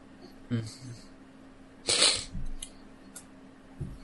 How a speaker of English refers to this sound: No, other than the fact I feel another sneeze coming on.